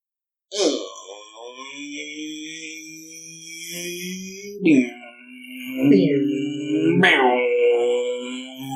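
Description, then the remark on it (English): Someone vocally imitates car engine noises while going to the IMDb website: a long, humming drone that wavers in pitch, then a few swelling revs that rise and fall. The voice stays steady and fairly loud, with no words. “Are you making car noises while going to IMDb?”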